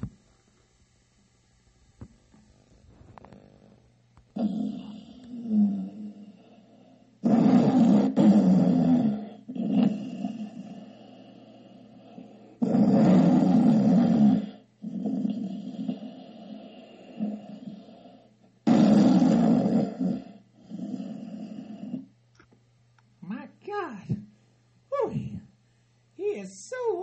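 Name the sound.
loud snoring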